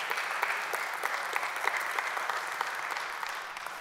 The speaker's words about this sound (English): Come on, give God a hand clap of praise on that.